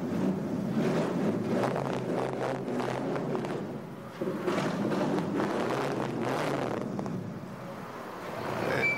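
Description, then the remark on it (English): The engine of a 1994 Dodge Viper RT10 two-seat sports car rumbles loudly, its deep growl surging in repeated revving bursts with a brief dip midway, and no one speaking. “And here it is, the Dodge Viper.”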